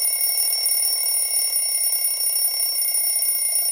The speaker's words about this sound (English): And that alarm signals time for the biscuit quiz.